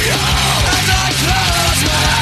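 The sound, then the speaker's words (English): A blast of heavy metal: harsh screamed vocals ride over dense, distorted guitars and pounding low end, loud and continuous for a couple of seconds. “you scream into the ether, a little …”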